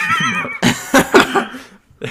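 A horse whinnies loudly, a shaky, wavering high-pitched neigh that breaks into a few breathy, snorting bursts before trailing off.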